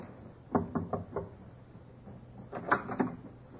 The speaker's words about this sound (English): Captain knocked.